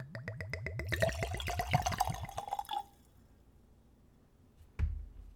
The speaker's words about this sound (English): So let's give it a pour.